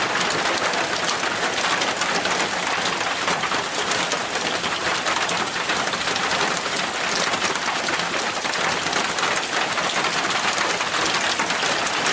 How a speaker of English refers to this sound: if you hear the rain falling